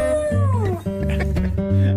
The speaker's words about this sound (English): It sounds a lot like her, only better. Yeah, it's a dog that says hello. Actually, says hola.